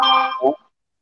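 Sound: phone notification ding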